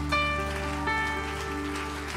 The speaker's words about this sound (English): Come on, why don't we clap our hands to the Lord together?